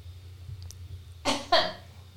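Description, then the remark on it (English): Two quick, harsh coughs, one right after the other, breaking a near-silent stretch with a low background hum and no talking. “Now I'm going to cough.”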